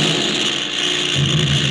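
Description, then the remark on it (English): A damaged airplane engine, hit by a pursuing plane and on fire, roars loudly and steadily, a dense droning rumble that swells slightly toward the end, with no voices. “He hit our engine. It's on fire.”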